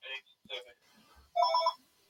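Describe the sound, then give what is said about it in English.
A phone rings once in a short, bright, trilling burst, clear, after a few brief murmured voice sounds. “And again, I've tried to show this, and my phone's going. I'll wait for that to finish.”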